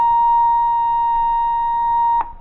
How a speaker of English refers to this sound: That is 1,000 cycles, or 1,000 vibrations per second, stripped of all harmonics.